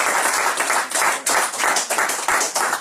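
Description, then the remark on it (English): A small group in a pub claps steadily, a dense patter of hand claps lasting a few seconds with slight swells, no talking over it. “Give yourselves a clap for that.”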